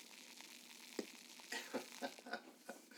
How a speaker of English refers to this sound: Wow. This actually smells good. And it fizzes like a soda, which is funny. It kind of reminds me of like Coke and rum, the smell. You hear that crackling, guys? It's fantastic, man. Fantastic. It's beautiful. I hope it picks up the crackling.